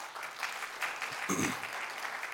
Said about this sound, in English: Don't go giving me your golf claps, okay? You give me your clap. Let's do it again.